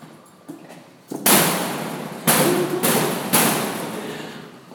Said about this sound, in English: Property room is? Straight back. Pound on that door back there. Okay, thank you. Pound on the door.